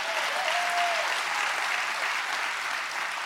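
An audience clapping their hands during a church sermon in steady, dense applause, many hands at once, loud and sustained throughout, with a faint brief tone near the start.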